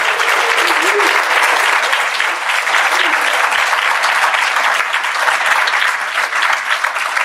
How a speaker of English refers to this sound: So I think that we all just need to give the commissioner one more round of applause.